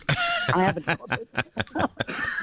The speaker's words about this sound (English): You brought a bit of coughing fit in the studio here as well.